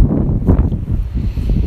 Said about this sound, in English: I don't know if the wind is going to make this cast kind of an inaudible.